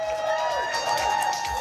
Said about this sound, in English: Big round of applause to Senator Cindy Conlogger.